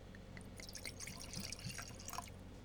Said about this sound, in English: Give this a pour.